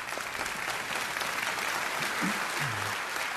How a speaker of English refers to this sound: When we go ahead and clap, that's okay.